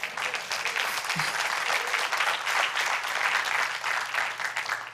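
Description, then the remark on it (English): A crowd claps steadily for several seconds, a dense, sustained wash of applause at moderate loudness, with no voices rising above it. “I think that needs a clap.”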